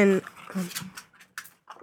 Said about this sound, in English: And I have a puppy playing behind me.